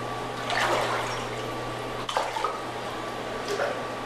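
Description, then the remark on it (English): Water sloshes and laps in three gentle surges as a young woman in a bathing suit wades down the seven steps into a mikveh pool during an immersion ceremony, over a steady low hum. “who for demonstration purposes is wearing a bathing suit, walks the seven steps down into the mikveh water.”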